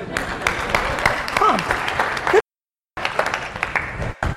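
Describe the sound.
An audience claps in dense, steady applause for the people in the room who use Snapchat. The applause lasts a few seconds and is cut off by a brief silent gap before the clapping resumes, with some cheering and voices mixed in.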